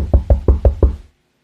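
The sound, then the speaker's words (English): Five quick, evenly spaced knocks on a hollow cubicle wall in an office, fairly loud, each a dull thud, then silence. No one speaks. “Why in the hell are you knocking on this damn cubicle?”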